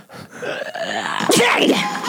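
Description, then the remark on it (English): A single sneeze: a drawn-out, wavering voiced buildup breaks into a loud, shrill burst with a squealing, falling tail. “That was your sneeze. It upset a lot of people.”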